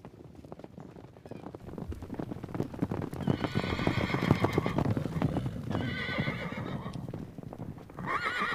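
A horse neighs and whinnies several times over a steady clip-clop of hooves, fairly loud, with dense rhythmic hoof noise throughout and a final high whinny near the end.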